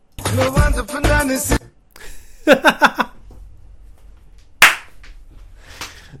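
A brief tonal musical sting gives way to a quick burst of three or four sharp hand claps, followed after a pause by one loud, crisp clap and a softer, hissy noise.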